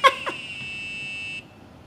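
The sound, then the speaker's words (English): A small electronic buzzer on a USB-connected demo board with LEDs gives two quick chirping beeps, then holds a steady, shrill tone for about a second before cutting off abruptly, during a live show demo. It is fairly loud and plays alone without any voices. “So as you could hear, it's still got the LEDs, but now it's got a buzzer. It can make tones.”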